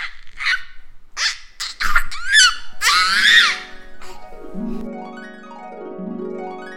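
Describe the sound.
A child imitates a dolphin's call with a string of short, high-pitched squeaks and chirps, then a loud shrill squeal, ending in a wavering tone that slides up and down in pitch.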